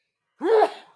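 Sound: sneeze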